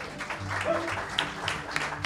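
An audience applauds the guitarist in a steady round of clapping, a dense crackling wash of many hands at moderate loudness that holds evenly throughout, with no one speaking over it.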